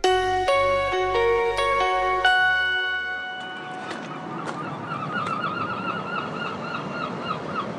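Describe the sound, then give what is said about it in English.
A bright chiming tone rings out first, then several seagull calls sound in scattered bursts over a steady outdoor rumble, fairly loud, just outside Hawley train station, nowhere near the sea. “Sounds of the seagulls, but you know what? We're nowhere near the sea.”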